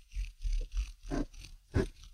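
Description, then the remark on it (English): A regular Dixon Ticonderoga pencil with non-rolling sides, rubbed back and forth between palms, makes a low, rhythmic, purr-like rumble of repeating pulses, with two louder, raspier strokes near the end. No voices. “if you take a regular pencil, like one of those Dixon Ticonderogas, you know, that has like the non-rolly sides, and you rub it between your palms.”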